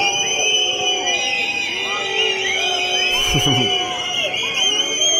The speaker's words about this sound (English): There's some more people yelling. Sounds like Canada, huh?